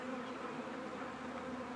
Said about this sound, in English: The beauty of a nuke is a package is just a bunch of bees in a box. This is a bunch of bees in a little mini beehive that you put in your bigger hive and they are ready to go.